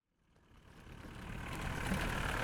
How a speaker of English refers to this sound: It's so nice and peaceful, except for sort of the buses which are starting to come through to take all the kids to school.